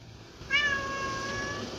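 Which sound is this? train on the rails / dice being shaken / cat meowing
cat meowing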